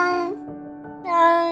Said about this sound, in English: We know when our cat wants to be let out.